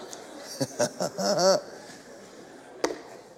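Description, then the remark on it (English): An audience at Bethel on a Sunday morning chatting among themselves, a soft steady murmur with a few louder voiced bursts and chuckles, then a single sharp knock near the end. “Y'all are a friendly bunch this morning. I hear you talking out there.”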